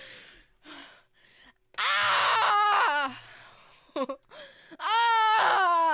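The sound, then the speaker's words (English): A voice imitates a creature's scream: two loud, shrill, wavering shrieks after some breathy gasps, each sustained for about a second and very close and intense. “It begins to scream incredibly loudly. The noise is so loud that it's impossible to hear anything other than it.”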